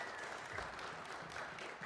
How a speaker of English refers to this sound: Hey, let's give this team a round of applause for leading us in worship. They do such a good job.